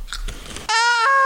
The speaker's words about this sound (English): All right, keep chewing.